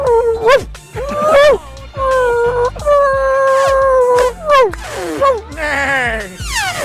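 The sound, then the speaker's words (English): A person does a dog impression with a run of drawn-out howls, whines and yelps, voiced loud, the pitch sliding up and down over several seconds. “I'd have to speak dog.”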